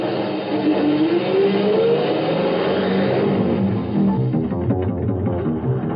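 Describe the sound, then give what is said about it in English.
A truck rig's engine revs hard as it is driven in a hurry, its pitch climbing steadily as the vehicle picks up speed. The roar stays loud for the whole stretch, with no voices. “Isn't that a truck like this one? Yeah, it looks like it. It's Wiley. Let's go. If we hurry, we can beat him to the cutoff.”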